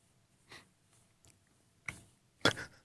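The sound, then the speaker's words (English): Crunchy chewing of a fresh bite-size snack: three sharp, crackly bites spaced irregularly, the last one loudest, over a faint low hum with no talking. “Let's go ahead and give it a try. Oh, it's a pretty good crunch.”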